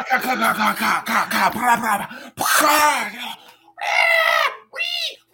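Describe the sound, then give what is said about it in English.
A person makes a rapid series of loud squealing, snorting pig-like noises with their voice, broken into a few bursts with short pauses between them. “Autistic pig noises.”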